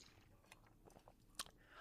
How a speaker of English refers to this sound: And so, hold on, let me take a sip of my coffee.